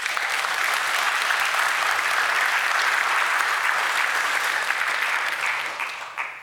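A crowd claps steadily in dense, sustained applause for about six seconds, staying loud and even before tapering off at the end, with no voices standing out.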